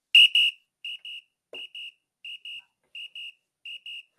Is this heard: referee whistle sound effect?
yes